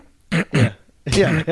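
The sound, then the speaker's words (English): A person vocally imitates their dog's sneeze, which has a weird breathing-in, with snorting, throaty bursts: two short ones, a pause, then a longer rasping burst and a quick final snort. “It does this like weird like breathing in of the sneeze.”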